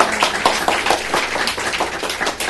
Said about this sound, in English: Damn it. More clapping. No, I'm kidding. Not really.